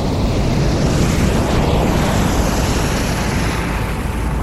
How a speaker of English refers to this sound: I'm standing on a beach, one where I spent most of my childhood summers. And the horizon, it starts to get smaller. The shore flows back and forth, higher and deeper, until suddenly a massive wave is in front of me.